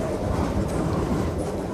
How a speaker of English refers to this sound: No one is hurt, and the train continues on. It rolls past for 7 straight minutes on its way to the Merrimack Generation Station in Bow, New Hampshire. Holy crap! Look at this freaking coal train!